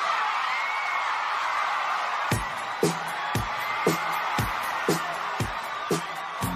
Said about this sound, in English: And hearing those screams from the audience, that was a revolutionary moment in pop culture.